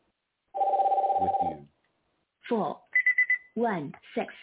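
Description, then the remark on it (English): A phone rings in one short, rapid trilling burst, then brief voice-like sounds follow along with a quick series of high electronic beeps. “Now, why this is ringing? Power off. I don't know, but let's turn that off.”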